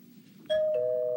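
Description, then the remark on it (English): A doorbell rings with a loud two-note ding-dong: a bright higher chime drops to a slightly lower tone that rings on steadily, following a soft low background murmur. “I am not answering the door to that man.”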